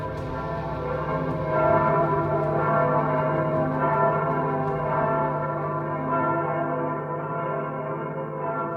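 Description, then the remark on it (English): Bells ring continuously with a rich, sustained tone, their overlapping strikes blending into a dense, resonant wash that stays steady and fairly loud throughout, with no voices present, ringing until every villager is inside the castle walls. “As long as I could hear the bells, I would have time.”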